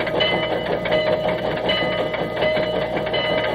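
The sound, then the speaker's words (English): The General, a steam locomotive built in 1855, chugs and hisses steadily, with its tappets and small steam escape valve, and a faint whistle-like tone sustained through the rumble; no voices. Recorded on a record issued by the Louisville and Nashville Railroad. “This is, by the way, the only authorized record of the actual sounds of the General.”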